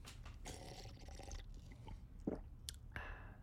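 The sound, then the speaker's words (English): Someone drinks water right up against the microphone as an ASMR bit: wet slurping sips, soft swallows and small liquid clicks in an uneven rhythm, with no talking. “Yeah, listen to me drink water.”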